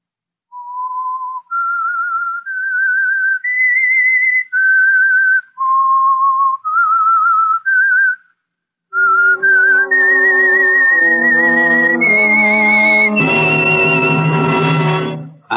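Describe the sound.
A lone whistled theme tune of clear, pure notes stepping up and down in a slow melody, then after a short pause a loud, fuller orchestral swell of sustained notes climbing higher.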